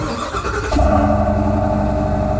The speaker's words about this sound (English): Oh, that's different. V8. Wow. So the first one was a Cummins for sure. Yeah. This is a V8. I think it's a V8 as well, but quiet. But is it a diesel? No, it's not. No. Listen again. No, not a diesel. Nope, too fast on idle, on startup.